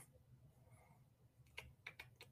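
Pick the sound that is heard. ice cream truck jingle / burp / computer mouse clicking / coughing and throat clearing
computer mouse clicking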